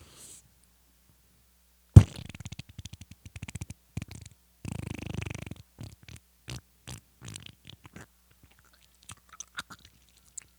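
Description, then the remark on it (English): Someone imitates a fart with their mouth: a sudden loud sputter, a longer buzzing raspberry, then a string of short wet pops that grow fainter and sparser. “We should have fart mics so we don't have to recreate it with our mouths.”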